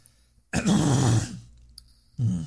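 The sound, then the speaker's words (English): A loud throat clearing bursts out for about a second, followed by a pause and then a second shorter rasping cough-like clearing, with no talking. “Where's the cough button?”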